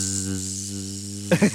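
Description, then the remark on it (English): A voice imitates the notification sound of the X app, likening it to an electric shaver, holding a steady, low droning buzz for over a second, then ending with two quick voiced bursts. “It just sounds like a fucking shaver when you're shaving your ball sack.”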